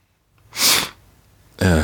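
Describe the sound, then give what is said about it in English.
A single sharp, loud sneeze bursts out after a faint intake of breath; a moment later someone begins speaking. “Yep, like, muting my mic because I'm like sniffling and sneezing.”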